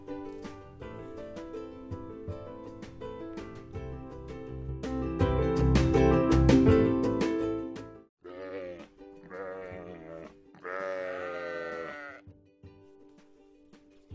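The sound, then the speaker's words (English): Several loud, wavering sheep and goat bleats ring out in quick succession near the end, following a stretch of busy, music-like sound; no one speaks. “So anyway, today we shall be looking at sheep and goats.”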